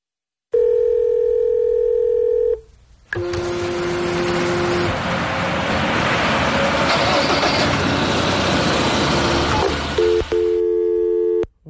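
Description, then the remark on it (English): A steady, loud telephone dial tone hums for a couple of seconds, gives way to a long burst of rough, engine-like noise, then returns briefly at the end. “That could be anyone's phone.”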